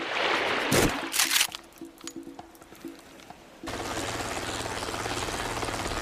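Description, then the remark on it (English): After a few seconds of rushing, uneven noise, a helicopter's rotor suddenly roars in, its blades thudding steadily with a low engine drone, loud, as if arriving. “Where did that come from? Is that some kind of cool new stealth chopper?”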